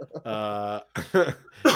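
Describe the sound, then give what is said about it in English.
A sustained voiced sound is followed by three short, rough bursts of coughing, uneven in spacing and moderately loud, with no talking alongside. “Should have used the cough button. Hey, if you're going to cough, leave the room.”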